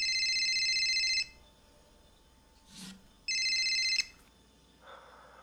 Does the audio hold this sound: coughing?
no